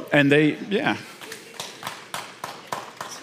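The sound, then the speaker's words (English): A brief vocal sound from the crowd gives way to sparse, scattered claps, roughly seven sharp hand claps spread unevenly over two seconds, as if only a few people in the audience are clapping, in response to a mention of a group of people who play Dungeons and Dragons. “We're gonna clap about that?”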